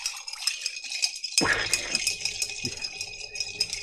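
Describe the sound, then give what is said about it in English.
Ice rattles and clinks steadily against glass as a red cocktail is stirred, a bright, busy jangle that runs the whole time, with one duller knock partway through and no voices. “And we're going to stir this drink.”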